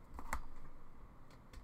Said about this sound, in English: She continued typing out her update.